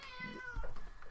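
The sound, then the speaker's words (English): A single drawn-out cat meow, fairly loud, its tone sliding downward before a brief rougher tail at the end, with no talking over it. “The cat has very opinion. Yeah, he's very opinionated about Minecraft.”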